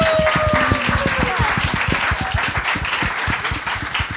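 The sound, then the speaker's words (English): An audience at Shoreditch House breaks into sustained applause at the close of a debate on whether TikTok is the new Instagram, many hands clapping densely and steadily at a fairly loud level throughout, with a faint whistle-like tone briefly sliding through early on. “So the motion fails, and this house does not believe that TikTok is the new Instagram. Okay, round of applause.”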